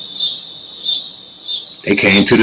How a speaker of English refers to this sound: Man, hear them cicadas?